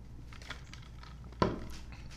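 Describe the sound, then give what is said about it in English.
A single crisp crunch of someone biting into food, followed by a brief crackly tail, over an otherwise quiet background with faint mouth noises. “I'm chewing.”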